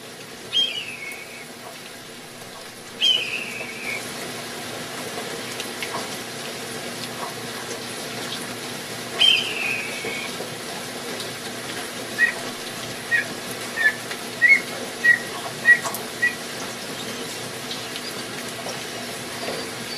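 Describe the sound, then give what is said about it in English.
A Steller's jay sitting in a tree imitates a red-tailed hawk's scream: three hoarse, downslurred screeches spaced several seconds apart, then a quick series of short sharp notes, heard outdoors against a steady hiss. “So he sends me a video of a Stellar Jay mimicking a red-tailed hawk.”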